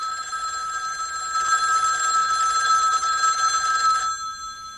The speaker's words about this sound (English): Or that telephone ringing.